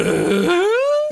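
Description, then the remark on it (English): A single loud fart, starting with a rough, buzzy sputter and then stretching into a clear tone that slides upward in pitch at the end, like a question. “There were some that were like a question mark.”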